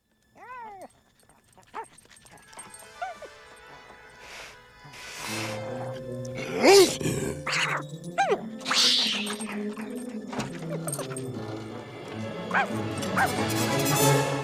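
In a movie scene, a small dog stands up to a cat, yipping and barking in quick, high-pitched bursts, loud, with some whimpering at the start and a busy background of clattering sounds and music-like tones.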